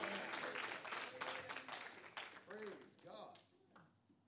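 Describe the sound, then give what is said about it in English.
A crowd of worshippers applauds to give praise to Jesus, with dense, steady hand clapping, joined by shouted voices and cheers rising over it, the clapping thinning out toward the end. “If you believe it in this place, clap those hands and give Jesus some praise.”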